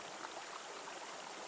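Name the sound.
river water flowing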